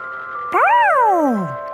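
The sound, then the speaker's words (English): A polka-dotted ice cream truck's jingle plays, a bright electronic tone swooping up and then gliding slowly down over a steady musical hum, fairly loud, with no one talking. “Even a polka dotted ice cream truck.”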